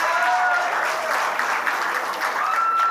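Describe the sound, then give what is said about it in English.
Divorced members of a comedy show audience clap steadily and loudly for a few seconds, a dense, even patter of many hands, with a few high whistles or whoops rising over it. “Those of you clapping, I love talking to divorced people after shows because divorced people always have a funny, whacked out story to share.”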